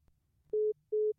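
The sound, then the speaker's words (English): A WhatsApp call ringing tone: two loud, steady mid-pitched beeps, each about a fifth of a second, separated by a short gap, over a faint low background hum with no talking. “They saw the phone ring and they're like, they're in. Maybe. Does it go to voicemail on WhatsApp?”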